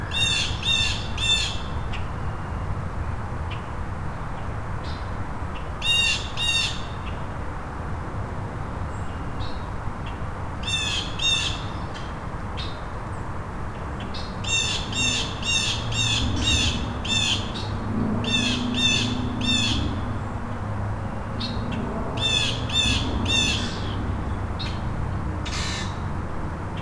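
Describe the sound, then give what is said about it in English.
Blue jays and grackles squawk in harsh, raspy bursts, calling in quick clusters again and again over a steady low rumble. No one speaks. “And if there's a predator over there, Or it could be the grackles and blue jays not getting along.”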